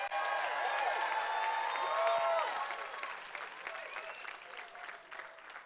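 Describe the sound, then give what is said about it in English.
A crowd gives the Lord a shout of applause, clapping loudly with scattered cheers and whoops, the clapping dense and sustained before gradually thinning and softening toward the end. “Well, let's give the Lord a mighty shout of applause before we start.”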